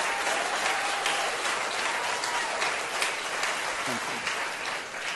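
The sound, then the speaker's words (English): A crowd of doctors applauds and cheers in steady, dense clapping that holds at an even loudness for about five seconds, with faint cheers and voices mixed into the sound. “Those are doctors cheering him on.”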